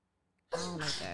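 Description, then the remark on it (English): A single loud sneeze caused by allergies bursts out abruptly after a moment of silence, a sharp voiced blast that sustains briefly with a breathy, hissing edge. “Oh my God. Bless you. Damn, allergies fucking me up.”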